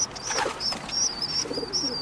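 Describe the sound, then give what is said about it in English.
Soft, low pigeon cooing rises near the end, while a thin, steady high-pitched chirping runs through the whole brief outdoor recording. No one speaks. “But what do you do when you have pigeon eggs?”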